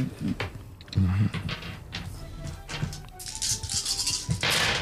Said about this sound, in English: GM rolls a bunch of dice.